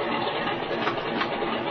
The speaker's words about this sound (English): Well, Jim, that engine's run long enough. You better cut your switches.